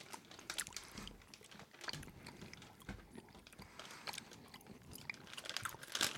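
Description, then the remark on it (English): Moist chewing of a tough elk jerky meat stick, with irregular crunchy bites and smacking sounds repeating steadily for several seconds, no talking. “No, I'm going to try the elk.”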